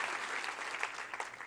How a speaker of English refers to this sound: Let's clap for the Lord before we sit down, and you may be seated.